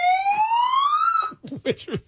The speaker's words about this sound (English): I was like, oh, you don't like the talk feature? Let me try the siren. That dogs really hate that too. But if you have a dog right now, they're probably freaking out over all the noise that's going on.